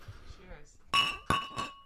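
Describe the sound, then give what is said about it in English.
Glasses of red wine clink together in a toast, three bright ringing taps in quick succession, fairly loud, with sustained tones after a quieter murmur of voices at the start. “Cheers, guys. Cheers.”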